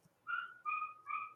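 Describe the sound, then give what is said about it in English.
A dog named Moose whines three times in a row, each high, thin cry drawn out for a moment with brief pauses between. The sound is clear, with no talking. “Can you hear Moose barking?”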